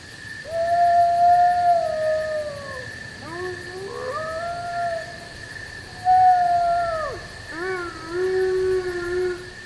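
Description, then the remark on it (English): In a dark conifer forest, a lone wolf calls out among the pines and a large pack of timber wolves, a subspecies of gray wolf, and their pups howl together: long sliding wails overlap with higher, wavering yips and cries from pups, rising and falling in waves, with no talking. “A lone wolf calls out among the pines, and a large pack of timber wolves and their pups chime in.”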